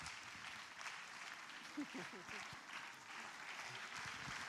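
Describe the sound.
A crowd applauds steadily, dense overlapping claps at a fairly even level for several seconds, with faint voices and a brief cheer mixed in underneath.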